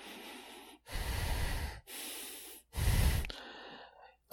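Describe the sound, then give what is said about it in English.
Heavy breathing from a doctor whose nose is touching a patient's nose: four loud breaths alternate between airy inhales and rougher, deeper exhales in a steady rhythm, with no talking, ending on a brief noisy catch. “Doc, your nose is touching my nose, and you're breathing kind of in my...”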